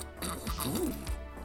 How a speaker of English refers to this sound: Yeah, I gotta get my sip here. It's out of a water bottle this time.